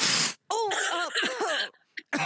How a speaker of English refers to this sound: Oh, now am I coughing? It went through the phone. There was so much dust.